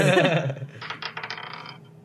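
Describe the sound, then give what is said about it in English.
Dice roll across a tabletop, a quick run of light clattering clicks that taper off over about a second, following a brief burst of voice at the start. “Make way! Roll dice!”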